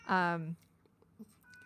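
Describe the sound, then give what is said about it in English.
A pet cat lets out one loud, drawn-out meow that slides downward in pitch and lasts about half a second, followed by near silence with faint background noises. “My cat. It's ridiculous.”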